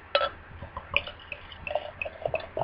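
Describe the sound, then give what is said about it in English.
A barrel-aged sour wild ale being poured into a glass: a soft, steady trickle with small gurgles, splashes and fizzy crackling bubbles, with no voices. “And the pour, here we go.”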